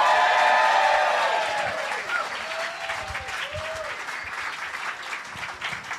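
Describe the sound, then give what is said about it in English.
An audience claps loudly and steadily, welcoming guest Will Anderson to the Little Dum Dum Club show, with scattered whoops and whistles riding on top; the applause is strongest at first, then eases slightly while continuing to the end. “Go absolutely crazy and welcome back into the Little Dum Dum Club, Will Anderson!”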